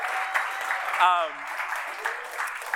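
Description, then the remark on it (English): A crowd claps in steady, dense applause for a man's 31st birthday, with a brief cheer or whoop rising above it about a second in before the clapping carries on. “Everyone wants to give him a round of applause.”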